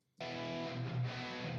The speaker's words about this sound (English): old … mixing trick was he'd put his guitar in one ear and the wet reverb of that guitar in the other ear. So it kind of added some cool like mixology stuff. You can hear here.